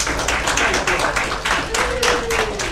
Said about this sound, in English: So please just give him a big round of applause.